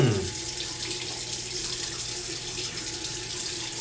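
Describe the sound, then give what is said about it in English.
Hot water pours steadily from a faucet, a continuous hiss and splash that holds an even level for the whole few seconds, with no voices over it. “Why are you putting the hot water on?”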